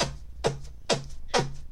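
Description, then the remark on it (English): Four quick, evenly spaced squelchy fart-like blurts made by pressing palms together, each a short raspy burst sliding down in pitch, fairly loud with no talking. “I'm not bad at pitch and putt, and I can make farting noises by pressing the palms of my hands together.”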